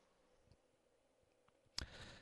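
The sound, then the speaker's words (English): A single sharp click of the F4 key on a computer keyboard stands out near the end after a few faint ticks, followed by a steady low hiss. “I'm going to grab my keyboard again and hit F4.”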